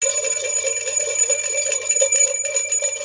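A bright, clear bell is rung twice, loud, its metallic tone sustained and shimmering throughout, with no voices present.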